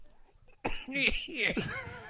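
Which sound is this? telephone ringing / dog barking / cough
cough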